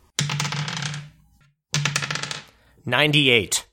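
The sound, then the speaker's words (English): Dice, including a D100, clatter and rattle across a hard tabletop in two quick, bright bursts, each about a second long, followed by a brief voice at the end. “Let me charge these dice in the meantime. All right. Give me a D100.”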